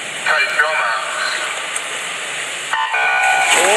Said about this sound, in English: The race started and immediately a second beep sounded and the false start rope didn't go down. Five guys kept on swimming. Have a listen to the start in case you missed it.